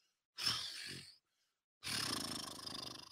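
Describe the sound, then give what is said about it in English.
A person imitates a roar twice, a short growling burst followed by a longer, louder rasping one, with a brief silence between them. “Roar.”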